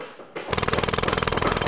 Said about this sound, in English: By the Eye of Greldor, now it sounds like somebody is drilling something into the ground.